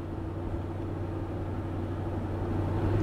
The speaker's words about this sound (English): But traffic is moving briefly. So that's a good sign.